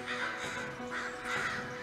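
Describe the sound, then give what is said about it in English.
Two loud, harsh raven caws ring out, each a rough, drawn-out croak with a short gap between them, and no one speaking. “I don't even know who's doing this is or if it's just some random raven attack.”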